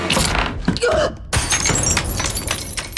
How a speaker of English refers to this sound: Like, you know, she tried to keep it muffled, but it was probably more important that glass shattered.